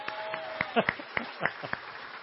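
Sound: smattering of applause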